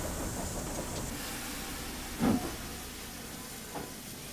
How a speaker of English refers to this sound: Well, now we've stopped the train.